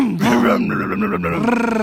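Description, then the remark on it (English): A person imitates a revving engine with a loud, sustained, growling vocal rumble lasting about two seconds, rising slightly in pitch partway through. “No, I just had to rev up my engine real quick.”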